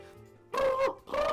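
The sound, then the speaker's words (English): A person makes two loud, sustained bird-call imitations, each a steady whistly, voiced hoot with a brief gap between them. “I can't do the bird noise.”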